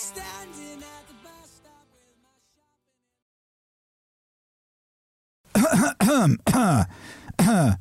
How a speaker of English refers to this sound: Can you clear your throat, please?